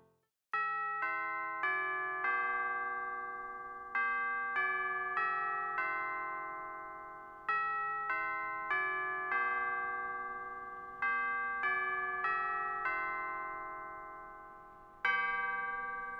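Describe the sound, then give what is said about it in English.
A clock chimes a four-phrase bell melody, each phrase of four ringing notes, then strikes a single deeper toll for one o'clock that rings out and slowly fades. Clear, with no talking. “There's 1 o'clock.”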